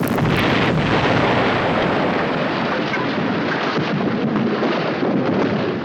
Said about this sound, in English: Following a dramatic slow-motion sequence in the soft light of their massive explosions